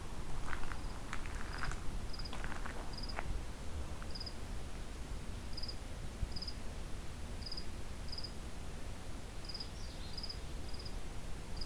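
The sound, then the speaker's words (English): A cricket chirps in short, evenly spaced pulses over steady background hiss, with a few rustling or footstep-like sounds early on and no one talking. “And a cricket.”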